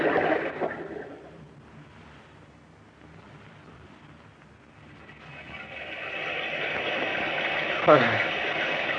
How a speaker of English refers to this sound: There's no sun, only this rain.